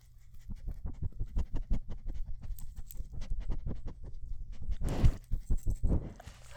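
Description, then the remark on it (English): A dog, Emma, sniffs rapidly and repeatedly right into the microphone, quick breathy snuffles with heavy low rumble, growing a little louder and more forceful toward the end. No one speaks. “Those were some good sniffing sounds.”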